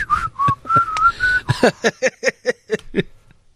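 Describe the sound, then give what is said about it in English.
A person in a good mood whistles a bright, cheerful tune: a few smooth sustained notes, then a quick bouncy run of short staccato notes. No talking. “It's just in a good mood whistling.”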